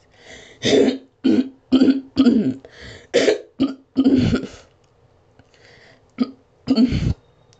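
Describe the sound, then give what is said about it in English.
A loud series of raspy throat-clearing bursts, about nine short rough grunts in irregular succession, with brief pauses and no talking. “Sorry, I had to clear my throat again.”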